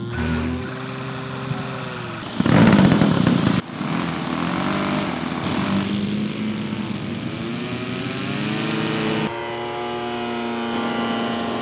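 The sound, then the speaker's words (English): A radio-controlled model airplane's small engine and propeller buzz with a high whining drone, pitch rising and falling as it revs and passes, with a brief louder burst partway through, at the Air Supremacy Over Goshen radio-controlled airplane show at the Goshen Airport in mid-July. “Today, our story is about the Air Supremacy Over Goshen radio-controlled airplane show at the Goshen Airport held in the middle of July.”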